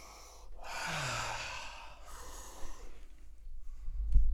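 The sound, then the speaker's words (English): Two long, breathy sniffs of sprayed Agua de Florida flower water, one after the other, followed by a quieter stretch with faint rustling. No one speaks. “We're sniffing Agua de Florida.”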